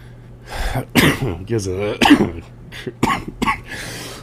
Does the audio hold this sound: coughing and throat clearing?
yes